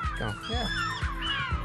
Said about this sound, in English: Do you hear that little one? That's me, said the seagull. I'm on that track.